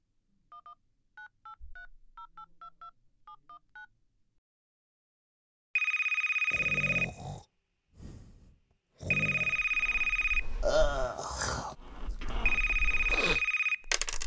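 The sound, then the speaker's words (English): A quick string of about ten short touch-tone beeps is dialed to call a grandfather at 2 o'clock in the morning, followed by a phone loudly ringing in three long, harsh electronic bursts with brief gaps between them. “It's 2 o'clock in the morning, but I'm going to give him a call.”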